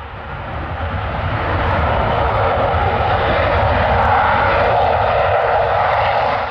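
A jumbo jet roars on takeoff close by, a loud, steady wall of engine noise that swells in the first second and holds strong throughout, with no voices.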